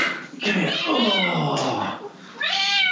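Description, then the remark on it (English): A female cat howls loudly directly into the microphone, drawn-out yowls with rising and falling pitch, two long cries separated by a short pause, filling the whole recording. “Otherwise she's just going to sit there howling at us.”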